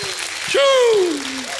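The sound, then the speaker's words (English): A church audience gives God a hand clap and a shout of praise: a dense, steady wash of applause while one loud voice shouts a sustained cry that swells and then slides downward in pitch before fading back into the clapping. “Church, give God a hand clap and a shout of praise.”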